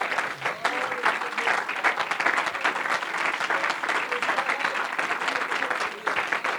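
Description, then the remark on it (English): An audience breaks into sustained applause as a hand clap of praise to the Lord before being seated, many hands clapping in a dense, steady roar that holds at an even level for several seconds, with a few indistinct voices mixed in. “Give the Lord a good hand clap of praise before you're seated tonight.”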